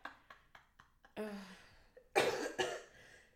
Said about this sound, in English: I'm sorry I'm coughing in y'all's ear. I'm really sorry.